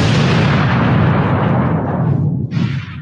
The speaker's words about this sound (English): Good thunder.